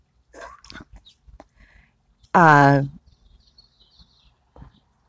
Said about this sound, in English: Somebody is making weird noises from the neighbor's house. I think it's like morning coughing.